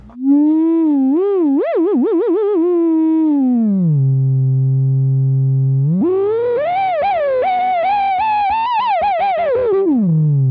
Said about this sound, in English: And it does this awesome thing where like if you turn up the resonance, it'll kind of like self-oscillate. Well, it actually just becomes like a sine wave.